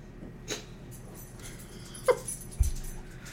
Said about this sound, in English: They're barking over who's touching the bone. And yet there's 20 of them. And Rocky's not even touching the bone.